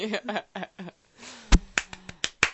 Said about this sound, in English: too many claps. 1, 2, 3, 4. I like when you say too many claps and I take one away by clapping again.